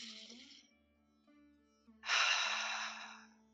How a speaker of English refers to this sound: To deepen it, if you put one hand, just one palm on your heart and one palm on your belly, that can really just connect you to your breath. And I'm just going to encourage you just to take a lovely deep breath into that lower hand.